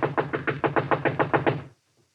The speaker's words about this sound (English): Knock again.